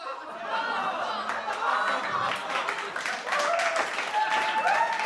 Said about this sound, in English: You can applaud. I'm leaving the breaks for you to applaud.